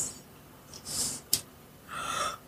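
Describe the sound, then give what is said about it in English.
A person yawns: a breathy intake of air, a brief click, then a drawn-out, faintly voiced exhale. Fairly quiet, with no talking. “You've started the yawn.”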